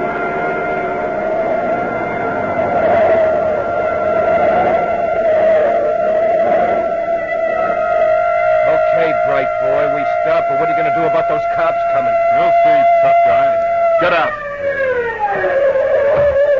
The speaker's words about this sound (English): A police siren a block behind. Cops, now we are in the stove.